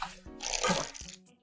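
A fairly large, intricate outdoor shishi odoshi bamboo water fountain, where the first bamboo piece fills and, falling back, fills a second: splashing, trickling water with two hollow knocks, the second near the middle, fairly quiet, with no voices.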